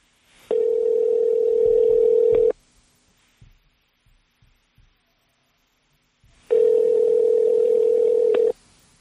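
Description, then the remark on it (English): Two long ringback tones on a phone line as a call is placed to a man, each about two seconds, separated by a few seconds of near silence with faint clicks; steady, loud, and clearly electronic. “Let's call him.”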